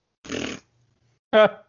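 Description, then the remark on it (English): Two short mouth-made fart noises, a buzzy, raspberry-like burst lasting under half a second, a pause, then a louder, more tonal blurt that trails off. No talking. “Why are you making fart noises?”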